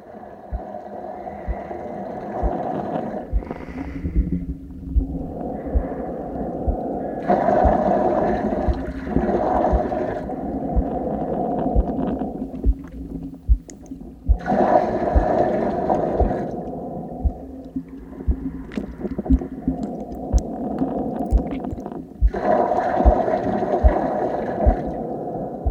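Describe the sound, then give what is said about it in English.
A dense, murky underwater drone recorded in a 100-gallon water tank filled in a studio: layered humming tones with a gurgling texture, swelling brighter in waves every several seconds before settling back. No voices. “And I was really struck with the desire to try to create a sound score that could get at that kind of internal drone that was happening underwater.”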